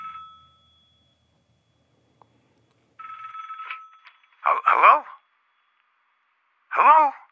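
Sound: telephone ringing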